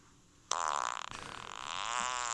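A loud, drawn-out recorded fart from another person, played back, bursts in suddenly and keeps going for about two seconds, a buzzy, rippling tone that wavers slightly in pitch, with no voices over it.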